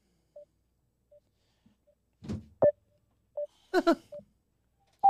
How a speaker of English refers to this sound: Hold, my phone keeps on cutting in and out. It's getting really annoying.